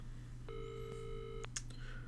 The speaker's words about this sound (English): Yeah, and then you hit the call button, and it rings for a little bit. For a moment, it doesn't seem like anyone's going to answer.